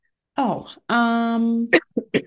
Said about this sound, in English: Sorry for the coughing, you guys. I'm going to try not to. It's going to happen. Yeah, it's going to happen.